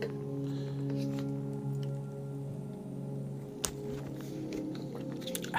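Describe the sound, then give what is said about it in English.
A person quietly sips a drink, with soft slurping and swallowing noises and one sharp click midway, over a steady low hum with no talking. “Let me take a sip.”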